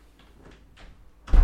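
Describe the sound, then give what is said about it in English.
A key is turned the wrong way in a door lock by someone struggling with the door: a few faint metallic scrapes and clicks, then a louder, sharp clunk of the latch near the end. No one speaks. “I keep turning the key the wrong way.”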